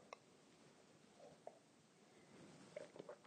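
Faint sipping of coffee: a few soft, brief slurping and mouth sounds scattered over a quiet background, with a couple of small clicks near the end and no talking.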